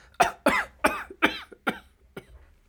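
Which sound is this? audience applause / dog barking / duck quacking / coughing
coughing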